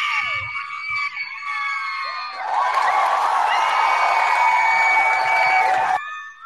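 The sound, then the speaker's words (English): A crowd cheers with high-pitched whoops and screams, then swells into a louder, denser roar of cheering and possible clapping for several seconds before cutting off abruptly. “That is a ridiculous amount of applause.”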